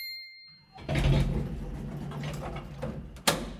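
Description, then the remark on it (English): Elevator doors slide shut with a mechanical rumble, then a steady whirring hum carries on as the car moves, ending with a sharp clunk. No one speaks. “your weekly rundown of what's going up and what is heading the other way in the Place North elevator. Doors closing, going up.”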